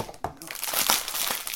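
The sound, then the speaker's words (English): The plastic wrapper of a packet of triple chocolate cookies crinkles and crackles steadily as it is torn open, a bright, busy rustle with a few sharper snaps, fairly loud throughout. “I'm going to open the biscuits for us.”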